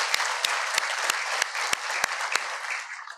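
A crowd applauds steadily, a dense wash of many hands clapping with a few sharper individual claps cutting through, fading slightly at the end with no talking.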